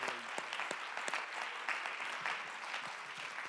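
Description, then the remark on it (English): An audience claps together in praise of Jesus in a steady, dense wash of applause, many hands sounding at once throughout, even in loudness with no speech over it. “Let's clap our hands and praise him one more time together in Jesus' name.”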